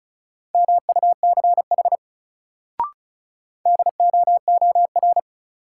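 Rapid Morse code beeps at 35 words per minute from a new-word drill sending sets of two words, a steady mid-pitched tone keyed in quick dits and dahs, two bursts separated by a brief click and a pause, with no voices.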